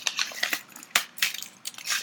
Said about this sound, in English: is breaking into the spiced chili chocolate bar.